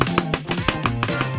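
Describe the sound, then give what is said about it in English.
Rapid, evenly spaced hammer strikes, about seven sharp clanks in a steady rhythm, ringing over a tonal musical backing. “Hammer!”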